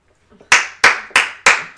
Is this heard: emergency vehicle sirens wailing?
no